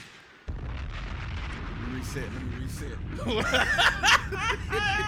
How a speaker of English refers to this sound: Look, he letting out gunshots and bombs.